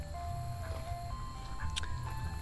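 A tinny ice cream truck jingle plays its simple stepping melody as the truck makes its rounds, fairly faint over a steady low rumble of street traffic, with no one talking.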